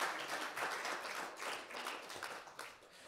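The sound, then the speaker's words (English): A crowd breaks into sustained applause, a dense, steady wash of many hands clapping at once, with no voices breaking through for the whole stretch. “Give Joe a round of applause.”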